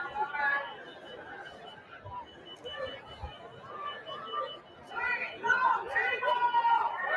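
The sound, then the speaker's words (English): A dense crowd of overlapping voices chattering and calling out, with officers shouting that they need more people, growing louder and more urgent toward the end as several people shout over one another. “They're shouting that they need more people.”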